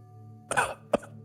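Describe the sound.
A person imitates the rough, gravelly cough of a crawling creature: a longer raspy burst followed by a short sharp second hack, over a faint steady hum.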